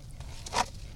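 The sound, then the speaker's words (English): A single crisp crunch as someone bites into a crunchy cheese stick at Gino's in River North, a short bright burst over a low, steady background hum, with no talking. “Cheese sticks. I forgot the exact name of these. You started munching on these before.”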